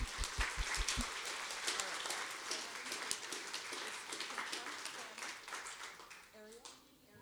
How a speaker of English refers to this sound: So can we have a clap for those beautiful ladies?